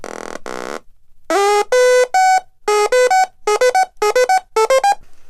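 A short buzzy noise burst, then a synthesizer sequencer pattern built from Little Bits modules (a power bit, an oscillator, a speaker, a keyboard and a sequencer): bright, buzzy electronic notes stepping between a few pitches in a quick, repeating rhythmic loop, fairly loud, with no talking.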